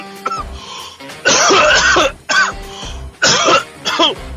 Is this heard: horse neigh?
no